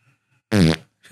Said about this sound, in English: Hey, FYI, that was a real fart.